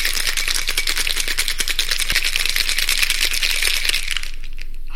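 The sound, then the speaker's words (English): A cocktail shaker rattles hard and fast as a Martinez made with genever is shaken in a kitchen, ice clattering in a rapid, steady rhythm of bright metallic clicks for about four seconds before it stops. No one speaks. “It's time for us to go into the Poisoner's Cabinet kitchen and shake up a storm.”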